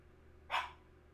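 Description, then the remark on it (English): A single short bark from a female dog, sharp and fairly loud against a quiet background hum, lasting only a fraction of a second. “If she's barking at something, I'm like, oh, it's, or if she's not barking at something, I mean, there's no ghosts around here, because she would bark at a”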